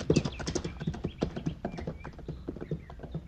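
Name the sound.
horse hooves clip-clopping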